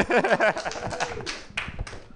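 A short burst of scattered audience clapping for pickles, a quick run of crisp, uneven claps that thins out after a second or two, with a voice briefly audible underneath at the start.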